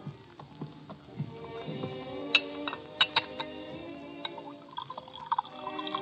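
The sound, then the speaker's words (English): Liquid gurgles softly as a drink is poured to refill a glass at a bar, punctuated by several bright, ringing glass clinks scattered irregularly throughout; no one speaks. “Refill your glass? I'll come with you to the bar.”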